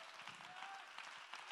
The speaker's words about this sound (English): Clap your hands and give my God the praise.